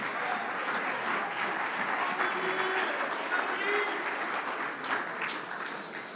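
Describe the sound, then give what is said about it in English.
An audience claps hands in a dense, continuous wash of applause, making a joyful noise unto the Lord, with crowd voices and cheering mixed in at a steady, fairly loud level throughout. “Oh, come on, clap your hands and make a joyful noise unto the Lord, somebody.”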